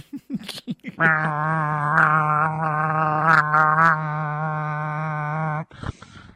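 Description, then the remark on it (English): A voice imitates a vuvuzela, holding one loud, flat, buzzing drone for about four and a half seconds at a steady low pitch, after a few short vocal sounds beforehand. “That's my vuvuzela imitation.”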